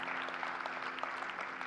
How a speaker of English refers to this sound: Can we just clap? Can we applaud him?